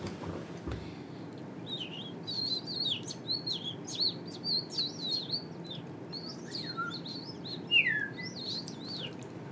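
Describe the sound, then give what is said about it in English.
A voice imitates birdsong with quick, high chirps and little whistled trills, repeated steadily for several seconds over a soft, low background hum, with one brighter rising whistle near the end. “We could do birds.”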